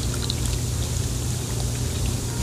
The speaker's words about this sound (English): Bubbles started coming out of my crotch when I did that.